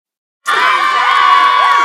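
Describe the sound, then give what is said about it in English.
A loud crowd of children cheering and shouting at a team running race bursts in after a moment of silence, a dense sustained roar of high voices with overlapping whoops and screams that continues to the end. “A lot of cheering going on.”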